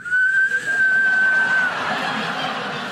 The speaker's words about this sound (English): Every cruise begins with the lifeboat drill. And you know what my favorite part of any lifeboat drill is? When they show you that little whistle. Nothing says instant rescue quite like.